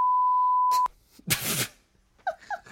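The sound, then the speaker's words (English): A steady, high censor bleep over a swear word holds for nearly a second, then cuts off abruptly, followed by a loud breathy burst and a few short vocal sounds. “You can beep that, right?”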